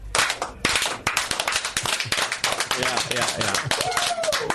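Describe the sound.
Steady hand clapping, a quick run of sharp, loud claps that keeps going for several seconds, with voices murmuring and calling out underneath toward the end.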